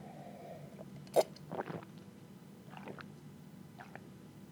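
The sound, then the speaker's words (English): Someone sips water from a glass: a sharp clink of the glass, then soft wet gulps and swallows spread over a few quiet seconds, with no talking. “Okay, sorry, I need a glass of water.”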